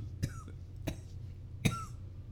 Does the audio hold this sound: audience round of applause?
no